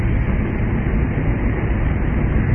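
A steady, heavy engine roar, spacecraft main engines firing for a course correction to a new heading, holds at an even loudness throughout with a dense low rumble and a hissing upper edge, and no voices.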